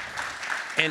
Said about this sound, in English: Wow. That was deep. That was deep. Give that a round of applause, y'all.